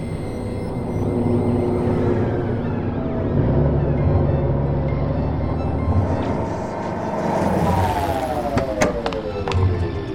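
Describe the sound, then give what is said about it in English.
A steady roar of road traffic at a rest stop area on the New Madrid Coastal Expressway, Salamanca City, South Island, at 8:17 p.m. on New Year's Eve, with vehicles rumbling past and a descending whine as one speeds by near the end, heard without any talking. “New Madrid Coastal Expressway. Rest stop area.”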